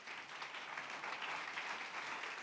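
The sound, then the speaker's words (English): A crowd claps together in a dense, steady wash of applause that holds at an even level throughout, with no voices standing out. “Clap your hands and bless the Lord.”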